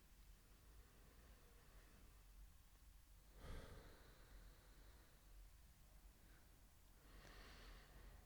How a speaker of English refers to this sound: And you can take two more inhales, or if you already got to about 20 inhales and exhales, then you can stop and open your eyes.